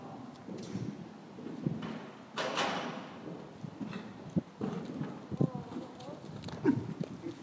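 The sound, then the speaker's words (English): Hooves of a dark brown horse walk at an unhurried pace across soft arena ground, dull irregular thuds, with indistinct voices of a woman giving a lesson to another woman murmuring in the background and a brief rustling burst partway through. “I'm at the edge of the arena. There's a woman giving a lesson to another woman.”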